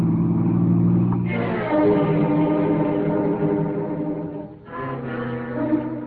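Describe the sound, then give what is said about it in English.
A car engine revs up and accelerates on a busy highway heading south, its pitch climbing through gear changes, loud with steady road rumble underneath and no one speaking. “He's speeding up.”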